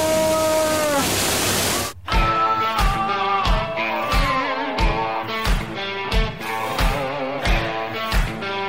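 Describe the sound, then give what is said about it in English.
A loud, steady rush of falling water fills the opening two seconds, with sustained tones layered over it, then cuts abruptly to upbeat rhythmic music with regular beats. “wonder of the world, it's the backside of water!”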